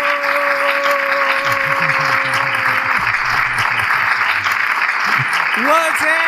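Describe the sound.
Steady clapping from many hands fills the whole stretch, a dense crackling wash that stays loud throughout, with voices talking and calling out over it.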